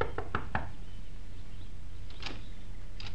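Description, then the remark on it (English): Three quick, sharp knocks on the wooden door of a small shack on the outskirts of the village of Crowborough, fairly loud, then a pause with a couple of lighter taps over a steady low background hum. “Within the hour, she was knocking at the door of a small shack on the outskirts of the village.”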